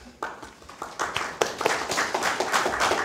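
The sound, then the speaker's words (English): Applause from an audience welcoming Congressman Garrett, starting with a few scattered claps and quickly building into steady, dense clapping that holds at moderate loudness through the end. “I try to populate the room with my staffers so that somebody will start the applause.”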